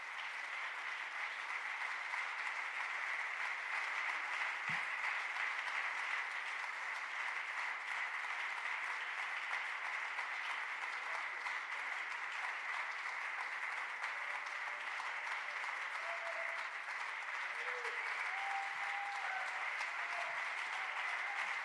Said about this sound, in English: Well, let's clap our hands to Jesus. Come on, let's love him.